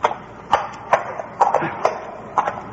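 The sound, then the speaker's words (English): Hooves of a horse named Trigger clip-clop at an unhurried walking pace as it goes along a tunnel leading off a path away from a crater, a series of sharp, hollow knocks spaced about half a second apart, clear against a quiet background. “Keep going, Trigger. You can go anywhere a criminal's horse can go.”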